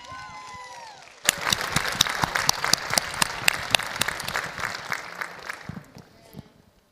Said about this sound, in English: So give her a hand clap.